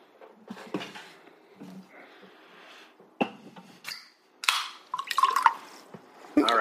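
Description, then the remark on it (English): Liquid sloshes and drips as cola, including a citrus cola with grapefruit essence, is poured and mixed, with fizzy crackling bursts and a few glassy clinks, uneven in rhythm, no talking. “Yeah, I've mixed up my Jordu.”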